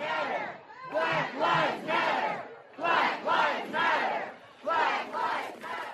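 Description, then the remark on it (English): A large crowd of Black Lives Matter protesters in an American city chants in unison, shouting a loud, rhythmic phrase of about three beats that repeats several times with brief pauses between each round. “I want to take you back because for 5 months, Black Lives Matter protesters trashed American cities with chants like this.”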